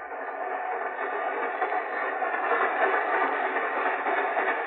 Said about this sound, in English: But you do know I was carried on this train.